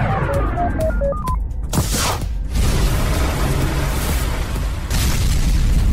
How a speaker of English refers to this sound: Hey, oh, that looks expensive. The test rocket crashed. Crashing rockets isn't a job I'd want.